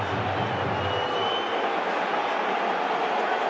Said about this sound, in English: Eden Hazard. Well, you can hear the crowd's reaction. Well, that's astonishing.